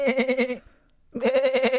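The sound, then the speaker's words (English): A sheep bleats twice, each cry loud and wavering, with a short silent pause between the two calls and no other sounds around them. “Mama sheep watching baby sheep being taken away?”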